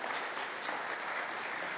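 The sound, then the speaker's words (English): A steady round of applause from many hands for speakers' remarks at an event ahead of a BRICS summit in South Africa, dense and even throughout the short stretch, with no voices standing out above the clapping. “I would like us to give them a round of applause for those remarks, please.”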